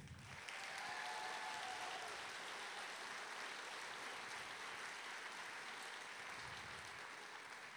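A crowd breaks into sustained applause, a dense, steady wash of clapping that holds at an even loudness for several seconds, with no talking over it.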